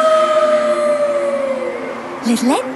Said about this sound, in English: Suddenly, there was a mighty howl. Howl!